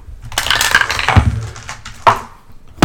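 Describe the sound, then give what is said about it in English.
Dice clatter and tumble across a hard tabletop as players roll perception or investigation checks, a busy rattling flurry followed by a couple of sharper knocks as they settle. Fairly loud, with no one talking. “Everyone roll perception. Or investigation.”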